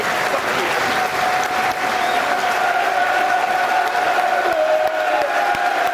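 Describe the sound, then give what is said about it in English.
A football crowd at Millwall's ground, The Den, applauds steadily for former player Phil Walker shown on the big screen, thousands of hands merging into a dense, unbroken roar of clapping at constant loudness, with faint sustained voices and cheers woven through it for the full six seconds. “Nice image of him on the big screen, and the den rising as one to applaud a Lions pioneer”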